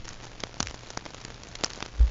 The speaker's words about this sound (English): And it's really a low frequency. It's difficult to hear, and it doesn't have the complex structure to it that other grouper sounds have, meaning it's just a boom.